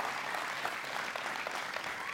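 A church audience applauding together in a morning service to thank a helper, a steady wash of many overlapping hand claps with no break, fairly loud and sustained for the whole stretch.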